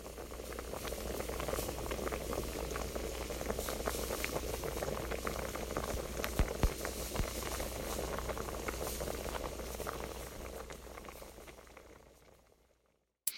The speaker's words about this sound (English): The bubbling soup is also recorded by yours truly